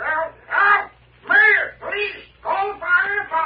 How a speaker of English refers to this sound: Well, I'll say this for him. He's the loudest parrot I ever heard.